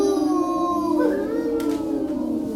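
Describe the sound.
Several voices hold a long, drawn-out moo together, imitating a cow; the sustained tones dip and waver partway through and fill the whole short stretch at a steady, fairly loud level.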